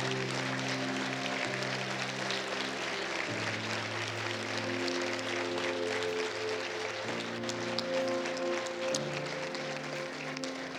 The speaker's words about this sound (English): I think it would be appropriate that we would clap at this point. Yeah.